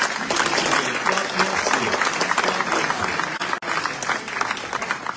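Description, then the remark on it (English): A large crowd applauds enthusiastically, a dense, steady wash of clapping that stays loud for several seconds with only a brief dip near the end, with no voices standing out. “We want to give you an enthusiastic round of applause.”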